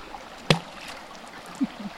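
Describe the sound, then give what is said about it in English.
Steady, soft rushing of stream water at night, at a retreat where women throw stones into the stream, fills the background, broken by one sharp plunk early on and a couple of faint low gurgles afterward. No voices. “It's the site of the closing ceremony of the five-day retreat where the women walk to the stream in the pitch-black night to throw stones into the water.”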